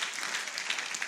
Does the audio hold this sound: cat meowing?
no